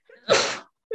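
A single sharp sneeze with a quick breathy intake before it, followed by a short snippet of someone starting to speak.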